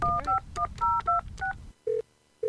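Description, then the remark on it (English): A quick run of cell phone keypad dialing tones, six or seven short two-pitched beeps in steady rhythm, followed by two longer single-pitch ringback tones after a pause, clear, as someone dials to make a quick phone call. “I need to make a quick phone call.”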